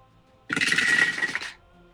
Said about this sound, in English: It's a lot of dice.